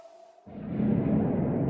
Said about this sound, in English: But what else are we hearing here? Well, at 143, there's the faint sound of a creeper hiss and explosion echoing through the cave. Here's the clip.